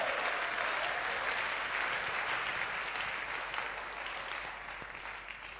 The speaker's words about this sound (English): Are you clapping your hands for Jesus, somebody?